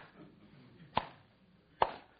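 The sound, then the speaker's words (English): Two slow, deliberate sarcastic hand claps, each a sharp crisp smack, spaced nearly a second apart against a faint low background murmur, with no talking. “Slow clap.”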